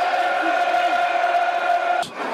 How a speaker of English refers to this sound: And the crowd are urging them on. 19 minutes. They're getting behind the Lions.